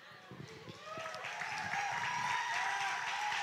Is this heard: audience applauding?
yes